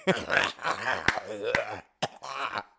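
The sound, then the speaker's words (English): A voice imitates a teacher's harsh, phlegmy cough: a gravelly, growling rasp broken by sharp hacking bursts, pausing briefly before one last rough, throaty hack. “Teachers have the most nastiest fucking coughs, bro.”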